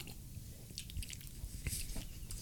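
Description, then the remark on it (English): Quiet mouth noises of someone sipping a shot of liquor, with small wet slurps and lip smacks over a low background rumble, no talking. “Let's try sipping the first button, then shooting it.”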